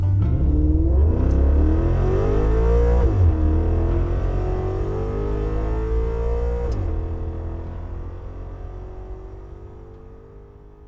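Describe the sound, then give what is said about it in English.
A sedan's engine starts and revs as it backs out of a barn and up a dirt path, its steady rumble rising in pitch through two gear changes as it drives away from the town of Wyattsville before slowly fading out. No one speaks. “He started the sedan's engine and backed out of the barn and up the dirt path”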